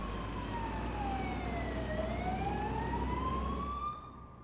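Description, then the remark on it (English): An approaching emergency vehicle's wailing siren sweeps slowly down and back up in pitch over a steady low traffic rumble, fairly loud and continuous, then cuts off abruptly near the end. No voices. “Next thing I knew, the sirens were approaching and the adrenaline was wearing off.”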